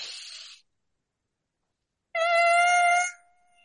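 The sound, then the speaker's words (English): A person with a reed on the tongue lifts the back of the tongue and makes a short, breathy snake-like hiss, then after a pause produces a steady, buzzy voiced tone that stops abruptly. No words are spoken. “And basically all you're doing is lifting the back part of your tongue and you're hissing like a snake to get sound.”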